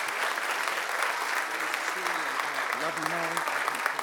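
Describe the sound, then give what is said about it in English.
An audience applauds steadily to welcome a guest pastor coming to speak on Sunday, dense clapping going on for several seconds, with a faint voice rising briefly beneath the sustained applause near the end. “Help me welcome him with a hand clap,”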